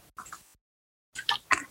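Short, wet slurping sounds of someone sipping water, a brief sip, a pause of silence, then two quicker gulps. No one speaks.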